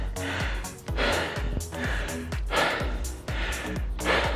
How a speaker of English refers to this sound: Just while I'm heavy breathing at you.